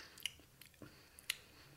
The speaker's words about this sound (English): Okay. He's chewing. He's chewing it.